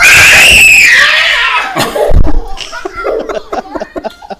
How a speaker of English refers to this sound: Quit screaming! I'm gonna scare me. Quit screaming! God damn it! Awesome. You're screaming like a girl, and you're a damn boy. Stop!